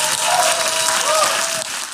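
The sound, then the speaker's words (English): A church audience breaks into sustained applause during a morning service, welcoming a pastor to preach: a dense, steady wash of clapping with a few cheers and whoops rising over it, loud and continuous throughout. “Without further ado, give it up for my dear friend, my brother,”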